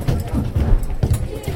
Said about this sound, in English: It's between classes at the Simon Langton School for Boys in Canterbury. The halls fill up quickly with students. Their footsteps pound the floor.